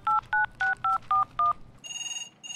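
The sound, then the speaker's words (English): Six quick dual-pitched telephone keypad beeps are dialed in a steady rhythm, followed by an electronic ringing tone pulsing on the line, clear with no voices. “Oh, it's ringing.”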